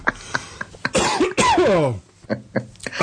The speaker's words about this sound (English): Okay, well, let's get on to the app picks, because it sounds like your cough's coming on a bit. Because you've done too much talking.